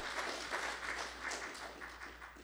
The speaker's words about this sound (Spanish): Si estás de acuerdo conmigo, un aplauso al Señor en esta tarde. Aleluya.